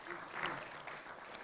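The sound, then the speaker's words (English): A church audience applauds, a dense, steady patter of many hands clapping that holds at an even, fairly soft level for the whole moment, with a slight swell early on. “So can we give her a massive round of applause?”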